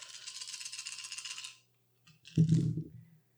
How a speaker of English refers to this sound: I'm rolling four d6s, two d8s, and a d10. Let's go.